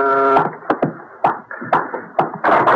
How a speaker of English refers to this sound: Open that door.